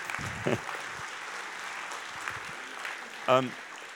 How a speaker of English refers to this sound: But that was great. Brilliant. Round of applause.